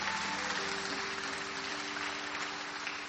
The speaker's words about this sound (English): Put your hands together for her one more time.